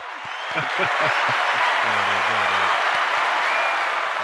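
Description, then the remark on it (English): A burst of canned applause plays from a sound-effect button pressed to welcome a guest, a dense wash of clapping and crowd noise that swells in and holds steady, with faint low vocal tones underneath. “Where's my applause button?”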